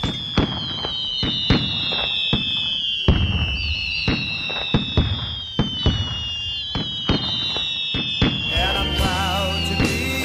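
Fireworks exploding in a rapid, irregular barrage of sharp bangs and pops, with shrill whistling rockets streaking overhead throughout and a dense burst of warbling whistles near the end.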